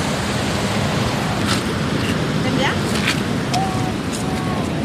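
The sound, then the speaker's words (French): A river rushes loudly at river level just before the water drops over the falls, a dense, unbroken roar of churning water, steady throughout with a few faint higher sounds poking through. “Alors là, on est juste derrière le trou, c'est qu'on est au niveau de la rivière, avant que ça tombe.”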